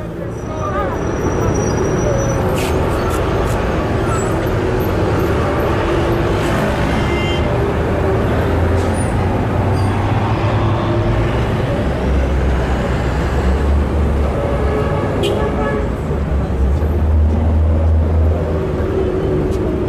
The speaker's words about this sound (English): So everyone, here is traffic noise from somewhere in the global south.